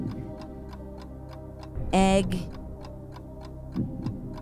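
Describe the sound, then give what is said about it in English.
A 30-second countdown timer clock for a guessing game ticks in a steady, quick rhythm throughout, with crisp, evenly spaced clicks. A voice briefly speaks over the ticking partway through. “And you have 30 seconds. I just started the clock.”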